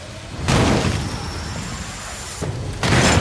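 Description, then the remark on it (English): Three heavy, booming slams ring out, one early and two in quick succession near the end, as secondary doors are shut. A dense rumble fills the gaps, and no one speaks. “Get those secondary doors shut.”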